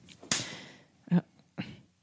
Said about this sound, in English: What was that? Nothing. You just slapped your fist. No, I didn't. Yeah, you did. They could hear it. You guys didn't. You guys heard that. Oh, you looked at me menacingly, and then you smacked your fist.